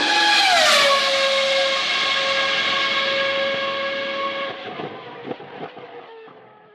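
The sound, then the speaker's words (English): A racing car engine sound in a homemade jingle screams past loudly, its pitch dropping as it goes by, then a sustained high whine lingers and gradually fades, with a few faint knocks near the end. “I like how long the car was left there.”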